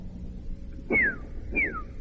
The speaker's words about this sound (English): Okay, well, evidently some bird sounds coming out now.